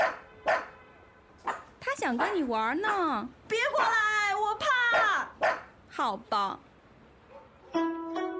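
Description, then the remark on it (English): A dog barks and yelps in a rapid, excited series of sharp, high-pitched calls with whiny rising and falling tones, broken by short pauses and a brief voice near the end. “你看，谁来了？啊！我怕狗。”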